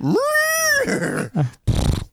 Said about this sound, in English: that's a goat. Oh, it is a goat.